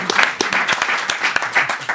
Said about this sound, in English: Round of applause for Steve there.